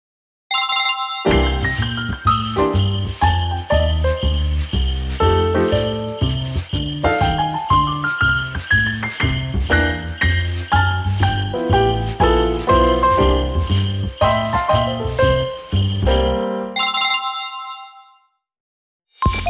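A bright, melodic phone ringtone plays a looping electronic tune of quick tinkling notes at a steady loud level for about sixteen seconds, briefly pauses, then starts again. No one speaks.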